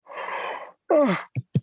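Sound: yawn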